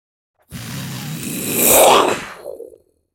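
A jet roars past in a quick flyby, its rushing noise swelling to a peak and then falling away in pitch as it passes and fades within a couple of seconds.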